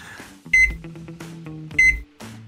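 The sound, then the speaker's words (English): Two sharp electronic beeps from a microwave keypad as someone sets the clock time in a kitchen, about a second apart, loud, each with a soft thump of the button press, over a faint low background hum. “I'll just go ahead and change the stove and the microwave time”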